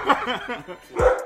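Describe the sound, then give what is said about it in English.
A dog gives one short, loud bark near the end, right after a moment of soft chuckling and voiced murmuring. “What up, dog? Tell him how you feel”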